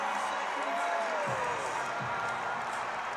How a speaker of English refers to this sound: Crowd comes to their feet in celebration of what will likely go down as the greatest coach in NBA history.